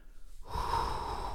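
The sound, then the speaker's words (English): A voice imitates the heavy, excited breathing of a hunter who has just shot a deer: a quiet start, then a sudden loud, sustained rush of breath sounds, with no words spoken. “The deer fell over. I'm freaking out. My breath starts going.”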